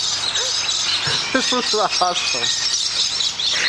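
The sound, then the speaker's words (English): An emu calls in a video, a burst of short, squeaky, chirping notes over a steady background hiss, the calls clustered together near the middle. “Is that the emu?”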